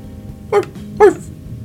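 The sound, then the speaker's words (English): A man's voice imitates a dog, giving two short, gruff barks like a rapper's barking ad-lib, about half a second apart, fairly loud over a low background hum. “Barking is really incredible.”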